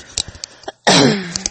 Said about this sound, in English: Sorry, y'all. I got a little cough. I can't seem to kick, and it's really annoying because it's like right down there in the chest, and wish it would go away.